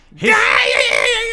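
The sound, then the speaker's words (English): A man lets out a loud, sustained scream that starts abruptly and holds steady with a strained, wavering pitch for over a second, imitating a wrestler whose gimmick was screaming through entire matches while wrestling. “His whole gimmick was that he'd scream the entire match.”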